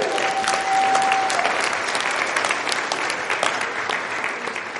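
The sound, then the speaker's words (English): A church audience claps steadily and loudly throughout, a dense wash of many hands with a brief steady tone sounding early on; no one speaks over it. “I reserve that applause for the Lord God Almighty.”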